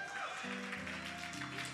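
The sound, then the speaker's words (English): A church audience claps for the Lord Jesus in a dense, steady wash of many hands, with a sustained low musical chord humming underneath. “Clap for the Lord Jesus.”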